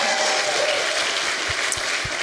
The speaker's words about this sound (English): That's way lower applause than you guys got, just so you know.